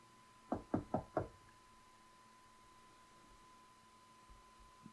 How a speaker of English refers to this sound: knocking on the door.